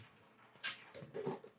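A dog named Pal crunches on a snack: one sharp, crisp crunch followed by softer, muffled chewing sounds, all fairly faint with no talking.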